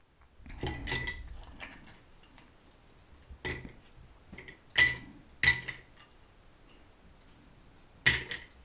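Ice cubes are dropped by hand into a rocks glass, filling it about three-quarters full for a gin old fashioned. They clink and clatter in a rattling pour, followed by several sharp, bright individual clinks spaced out over a few seconds, fairly loud with no talking.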